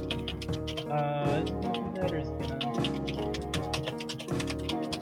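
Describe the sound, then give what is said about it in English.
Quick, irregular clacks of someone typing on a computer keyboard with their microphone unmuted, steady throughout, layered over a dense, continuous background of voices and tones. “you should mute when you're typing.”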